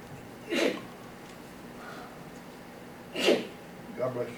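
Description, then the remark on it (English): Two sharp sneezes a few seconds apart, each a sudden breathy burst at moderate volume, with a quieter snuffly sound following the second and faint background hum in between. “God bless you, yeah.”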